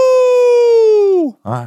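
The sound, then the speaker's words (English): A person imitates a wolf howl: one long, steady, loud vocal note held for over a second, sliding downward in pitch at the end, then a short voiced yelp. “Give us a howl one time for the culture.”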